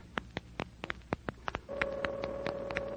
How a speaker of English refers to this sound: I put the phone down and dial. Got to hurry. Hurry. Don't they answer? What's wrong?